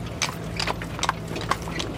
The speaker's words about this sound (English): And here there are families just jumping inside horse-drawn carriages for a little ride around the cobblestone streets here.